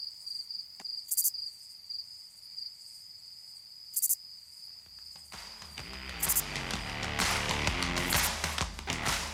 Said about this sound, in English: Someday, there may be an ad here, but for now, just enjoy the soothing sound of these crickets.